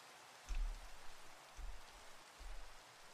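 Steady rain hisses across the whole clip, with low rumbling swells of thunder pulsing underneath at regular intervals. No voices are heard.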